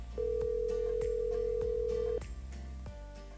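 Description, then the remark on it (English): A single steady ringback tone on an outgoing phone call to a doctor lasts about two seconds and then cuts off, loud and clear over a faint rhythmic background. “It also just so happens to turn out that this guy has a pretty cool story and likes to play one of my favorite games, phone tag.”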